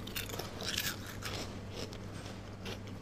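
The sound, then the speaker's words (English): Crunching as someone bites into a smooth dessert with a crisp, deep golden top: a few short brittle cracks over about three seconds with quiet chewing between, fairly soft overall and no talking. “And all of a sudden, when you bite into it, you've got the smooth and then you've got the crispiness.”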